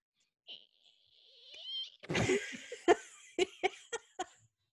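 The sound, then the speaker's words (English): A voice mimics a balloon being twisted: thin, high squeaky whines that rise and wobble, then a rough burst and five quick, sharp squeaks or pops in a steady rhythm. No other talking. “Twisting a balloon. What? Does that make a noise? Yes.”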